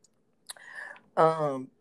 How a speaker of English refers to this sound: Excuse me. Just I am over here sipping, y'all, because it's called Straight Mojita. I have my Tito's and like this guava juice. So that's where that little belch came from. Excuse me.